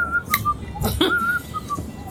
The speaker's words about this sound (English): I'm going to saunter on in, whistling.